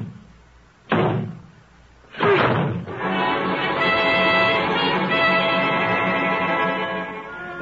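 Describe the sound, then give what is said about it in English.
Two heavy blows slam against a door a second apart as people break it in together, then a loud sustained rush of noise follows as it gives way. No one speaks. “I'd to break this door in, or rather we are.”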